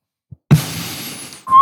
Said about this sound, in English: See, something that would make that better, I think, would be a Hanna-Barbera sound effect. With the eyebrow side whistle.